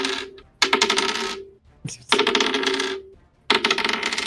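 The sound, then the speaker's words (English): Physical dice clatter across a hard tabletop in several separate rolls for attacks and damage in a tabletop game, each a bright burst of rattling clicks lasting about a second, with short pauses between and no voices. “The reason you don't roll digital dice is because then your players get to hear this.”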